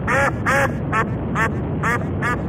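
A duck quacks six times in a steady, evenly spaced series, each call loud and nasal, with a faint low rumble underneath and no talking.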